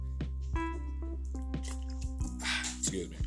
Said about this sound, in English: Need to get a sip of water there.